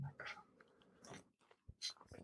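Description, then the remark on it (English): A dog chews right up against the microphone, making loud, irregular wet crunches and clicky bites in quick bursts over a couple of seconds, with brief quiet gaps between mouthfuls. “The dog was just chewing in the microphone.”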